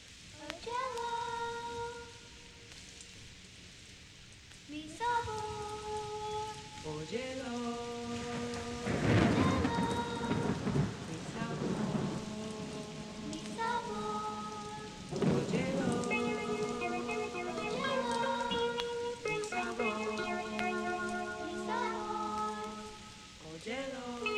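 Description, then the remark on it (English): Heavy rain pours steadily beneath a slow melodic music intro, with loud surging bursts of downpour and rumbling thunder swelling up partway through. “When you're listening it too loud, the raindrops are serious.”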